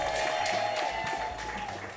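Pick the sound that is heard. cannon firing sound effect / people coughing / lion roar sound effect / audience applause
audience applause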